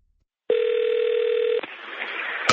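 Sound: telephone dial tone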